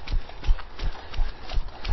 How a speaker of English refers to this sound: And pass 3 horses.